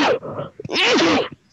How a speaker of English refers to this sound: Oh, I got to sneeze.